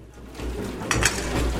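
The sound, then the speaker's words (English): Dishes clink and clatter as a woman washes them in the kitchen of a school that has become a refuge for families, with a couple of sharper knocks of crockery over a steady low background hum. “using the kitchen to clean the dishes.”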